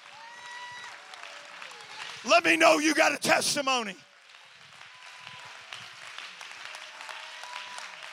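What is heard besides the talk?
audience clapping hands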